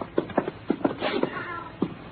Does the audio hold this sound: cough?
no